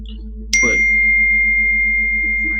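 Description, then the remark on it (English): A single bright phone notification ding rings out sharply, then lingers as a steady sustained tone over a low background hum, with no one speaking. “Let me turn off these notifications and shit.”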